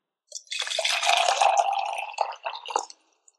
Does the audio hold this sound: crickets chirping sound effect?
no